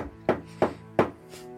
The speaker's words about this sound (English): So Nala knocks the door. The door opens.